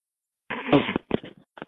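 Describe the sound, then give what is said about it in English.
A single sudden, explosive sneeze bursts out after a moment of silence, followed by a few short snuffling breaths and sniffs. “Bless you.”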